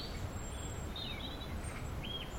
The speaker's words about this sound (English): I suppose the birds we know are in the area at the moment, as well as the ones we've definitely heard, it's also coal tits, tree creepers and nuthatches.